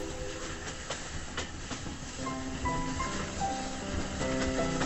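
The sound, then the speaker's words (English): A train rumbles past with steady rolling clatter and hiss, and in the second half a few faint, sustained horn-like tones sound over the noise. No one speaks. “And the corn, like drunken grenadiers, topples tarnished, whispering at the hooting train.”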